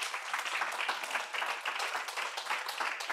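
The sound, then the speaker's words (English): A church audience applauds together at a morning service, giving God a round of applause: a dense, steady wash of many hands clapping that holds at an even level throughout, with no single voice standing out. “Oh, somebody give God a round of applause this morning.”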